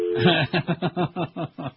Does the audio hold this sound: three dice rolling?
no